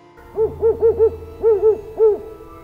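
An owl hoots seven times: a quick run of four, then a pair, then a single hoot. The calls sound clear over a faint low background hum.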